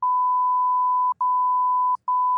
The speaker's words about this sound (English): The phone number, and I'm probably going to bleep it out. The phone number was.